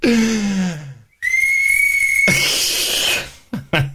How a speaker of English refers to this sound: This is a shitty whistle, by the way. It's a piece of crappy.